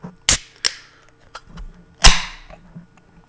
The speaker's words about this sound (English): And there's our beer crack.